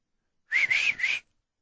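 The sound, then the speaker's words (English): A short mouth whistle in three quick connected phrases, sliding up and down in pitch like a shepherd's herding call to a sheepdog, heard alone with no talk. “Do you whistle sheep? Come by.”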